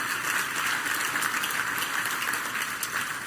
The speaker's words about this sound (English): So just give a round of applause for what Jesus has done in planting the church.